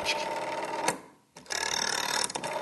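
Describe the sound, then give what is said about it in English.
A rotary phone dial whirs and clicks as it spins back, pauses briefly, then clicks through another number in a fast mechanical run, each click sending the dialled number as a signal over the line, bigger numbers giving longer series of clicks. Fairly loud, with no voices. “So the bigger the number was, the longer the series of clicks would be.”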